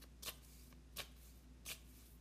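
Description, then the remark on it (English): Quiet shuffling of a deck of oracle flower-message cards before laying them face down, with three short crisp riffling bursts spaced about evenly apart over a low steady background hum. “I'm going to just shuffle and put them down face down first.”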